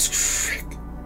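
A short, harsh metallic scrape as a metal washer tied to the end of a string is pulled across a hard tiled floor for about half a second, fairly loud, with a thin squealing edge before it cuts off into quiet.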